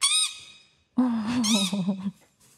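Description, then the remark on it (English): A parrot in a video playing on an iPad squawks twice: a short, sharp harmonic call, then after a brief pause a longer, wavering screech. The calls are loud, with no talking. “It's watching parrot videos.”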